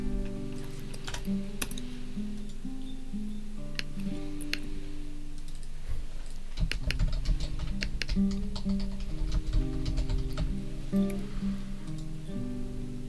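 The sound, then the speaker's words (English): Steady, rapid typing on a computer keyboard, with crisp clicking keystrokes in uneven bursts over a low sustained musical drone, fairly quiet, with no talking. “He's still typing.”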